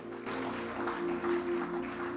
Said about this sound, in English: Give the Lord a mighty clap offering in the house.